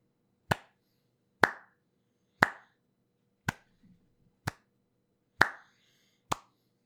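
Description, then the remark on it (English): Seven slow, sharp hand claps come from a single mysterious figure stepping out of a doorway. They are spaced about a second apart, crisp, with a short echo after each; no voices. “A clapping figure steps out of a nearby doorway.”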